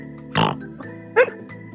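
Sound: person imitating pig oinking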